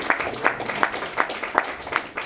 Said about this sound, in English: How about a round of applause, firstly, to the riders?